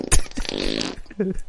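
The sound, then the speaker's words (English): A loud, wet, sputtering fart erupts, starting with a sharp burst and trailing into a buzzy, bubbling rasp for about a second. “Oh, you got a wet fart? I was about to say, that shit was disgusting.”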